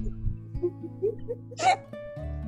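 A single sharp hiccup stands out clearly over a steady humming background, preceded by a few soft little catches of breath. It sounds moderately loud, with no talking.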